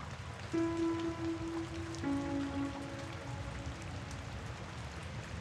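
Steady rain hisses and patters throughout, with no talking. Two long, low droning tones sound over it, the second slightly lower in pitch than the first, before fading back into the rain.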